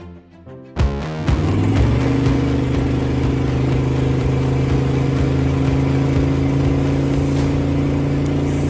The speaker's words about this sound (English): He sent that a little while back, and that was his Yukon trying to do 65 to 70, he said. He was doing a 65 to 75 pull